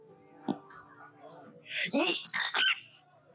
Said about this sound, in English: You were so excited you sneezed.